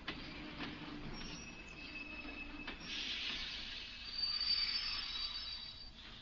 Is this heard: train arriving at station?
yes